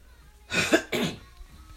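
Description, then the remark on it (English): A fairly loud throat clearing in two quick rasping bursts, heard alone with no talking, the second burst following right after the first. “I had to clear my throat.”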